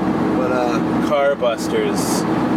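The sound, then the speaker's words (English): A steady low rumble of road and air noise fills a car cabin, continuous and fairly loud, with people talking over the top. “We are in the car.”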